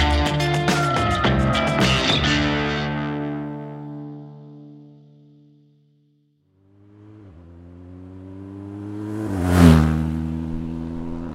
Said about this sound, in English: Instead of four paws, I'm on two wheels. I'm on a mission. A motorcycle quest to try and retrace the path of Germany's wolves, following them westward from Poland into the former East Germany.